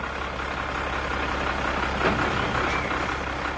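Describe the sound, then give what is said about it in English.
A heavy rubbish truck rumbles steadily, its low engine drone filling the scene, with a brief hiss and clatter midway as it comes to a halt outside a house and idles. “Then the rubbish truck came by and stopped outside the house.”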